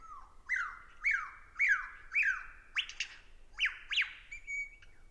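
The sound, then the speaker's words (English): A bird gives a rapid series of about eight shrill, shrieking alarm calls, each a harsh rising-and-falling squeal, loud with no one talking. “You'll see them do that, running across the road sometimes in front of you, making also sometimes shriek alarm calls.”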